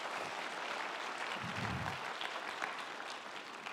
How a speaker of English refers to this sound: Thank you guys so much. Thank you so much. Y'all give my volunteers a hand.